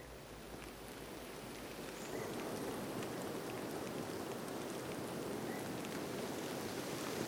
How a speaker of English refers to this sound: It's a kind of a rainy, misty Sunday morning.